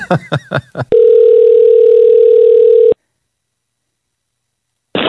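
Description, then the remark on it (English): A rapid string of short keypad dialing beeps as a long phone number is dialed to call a listener gives way to a loud, steady telephone tone lasting about two seconds, followed by silence and a brief final burst. “Yeah, and we got another text that I have to call this person.”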